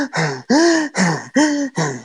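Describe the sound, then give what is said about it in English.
A voice imitates heavy, out-of-breath panting: five loud, voiced breaths in a steady rhythm of huffing inhales and exhales, with no words. “And they're just panting, and they're just like...”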